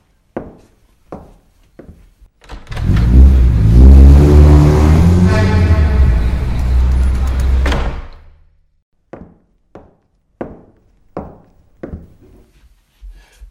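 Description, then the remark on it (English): A few sharp wooden clunks as a door is opened, then a loud burst of busy London street traffic with a revving engine roaring for several seconds before cutting off, followed by scattered knocks and thuds. No one speaks. “I could open the door and see if there is any street artist doing any music. Why not? This is London after all.”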